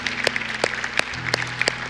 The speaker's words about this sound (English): Hey, can we give God a round of applause? Say thank you, Jesus. You are so good.